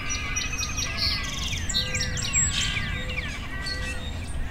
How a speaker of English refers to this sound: So I'm pulling up Northern Cardinal so far.